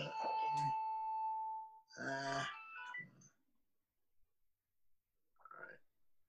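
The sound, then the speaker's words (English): A phone rings with a bright electronic ringtone: a few bursts of tonal chimes, one held note, then a pause before a shorter final burst. It's clear. “Yeah, so let's turn the phone off first, and then let's.”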